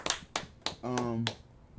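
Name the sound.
hand clapping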